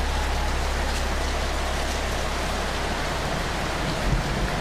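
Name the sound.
storm rain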